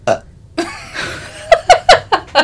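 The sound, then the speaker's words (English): A drawn-out vocal noise gives way to a quick run of five sharp hiccups from a person, spaced about a fifth of a second apart, loud and abrupt. “Yeah, I mean, what would people do if they didn't hear me viciously hiccup?”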